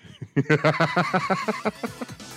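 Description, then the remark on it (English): A goose on a video screen honks loudly and rapidly, a quick run of about a dozen harsh, nasal calls, with no talking. “He said he just had to explain to his wife what he was watching when the gay goose came on the screen.”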